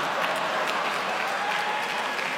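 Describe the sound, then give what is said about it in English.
A room of people claps in a steady, even patter that never swells or builds, sounding polite and half-hearted rather than enthusiastic. No one speaks over it. “You're going to get lukewarm applause at USC for some of the kids here.”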